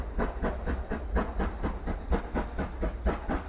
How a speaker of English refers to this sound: It was 1975 when the American Freedom Train left the station. Some of you remember, it was a restored engine from the age of steam, pulling 28 cars through all 48 states, contiguous states